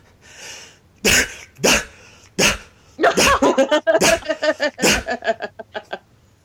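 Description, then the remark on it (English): A human voice imitates a man who barks when out of breath: three harsh, separate bark-like bursts, then a quick rhythmic run of breathy, panting barks that gradually shorten and fade. “It's the weirdest, like, breathing. He kind of barks when he's out of breath.”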